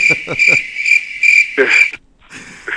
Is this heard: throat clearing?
no